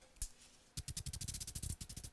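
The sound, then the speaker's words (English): A can of avocado, sunflower and coconut oil spray hisses in short bursts as egg rolls are sprayed top and bottom: one quick puff, a brief pause, then a rapid, steady run of a dozen or more sharp sprays, fairly quiet and with no talking. “And then they get a little spray with an oil spray.”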